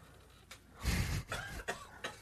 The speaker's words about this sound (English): That's not me coughing, by the way.